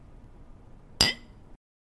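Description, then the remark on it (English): A single bright clink of two wine glasses touching in a toast before tasting a wine, sharp, ringing briefly before fading over a faint low background. “All right, well, should we taste it? I think we should actually, in fact, taste it. So, cheers.”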